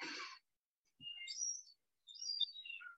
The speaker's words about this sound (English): Well, sorry about the seagulls. I have such a vision of your house as being, I don't know, a lighthouse surrounded by seagulls and jackdaws and stuff.